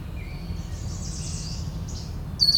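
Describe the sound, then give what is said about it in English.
A yellow warbler sings faintly over a steady low outdoor rumble, its thin high notes ending in a brighter phrase. “Yellow warbler right away.”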